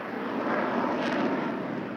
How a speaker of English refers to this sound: The Americans had taken Baghdad International Airport a couple of days prior to Carlton's arrival. Air transports screamed onto the tarmac.